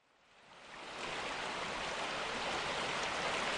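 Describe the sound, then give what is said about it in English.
Rushing rapids of the Kawerau River in New Zealand swell up quickly and then roar steadily, a dense, continuous wash of turbulent water with no voices. “As one of New Zealand's largest rivers, the Kawerau is a mecca for thrill-seeking rafters, riverboarders and jet boaters who brave its freezing waters and conquer its turbulent rapids.”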